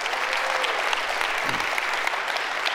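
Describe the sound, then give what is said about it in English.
A large church audience applauds the Lord steadily at a morning service, a dense wash of many hands clapping at once that holds at an even, fairly loud level throughout, with no talking heard. “Can we just give the Lord an applause this morning?”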